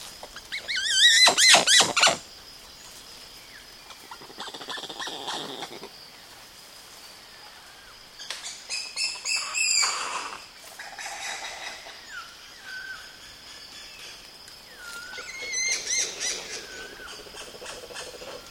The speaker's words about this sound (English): Douglas Quinn recorded this bevy of communication among a troop of one of the most charismatic and endangered species in Brazil, the woolly spider monkey.